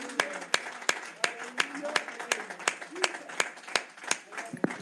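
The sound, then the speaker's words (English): A church audience claps in steady unison in praise of the Lord, sharp rhythmic hand claps roughly three per second, with voices and murmuring carrying underneath throughout. “Give the Lord a hand clap of praise if you love his word.”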